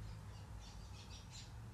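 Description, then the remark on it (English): Birds chirp outdoors in a short run of high, bright calls, a few quick bursts in succession, over a low steady background hum, with no one talking. “Just as I said that, the birds started chirping outside.”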